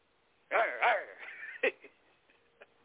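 A large Rottweiler police dog barks twice in quick succession, loud, followed by rougher, lower vocal noise and a sharp knock, with a few fainter sounds trailing off.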